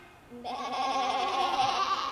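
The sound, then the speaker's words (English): A single long, quavering sheep bleat starts after a brief quiet moment and carries on wavering to the end, fairly loud with no other sounds around it. “The shepherds were there watching over their sheep. Say, hi, sheep.”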